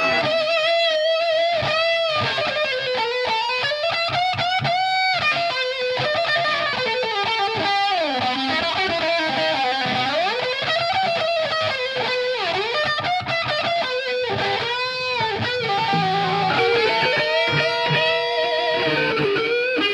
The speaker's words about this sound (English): You can hear the difference when the guitar solo like switches from one guy to the other guy because the guitar tones are different.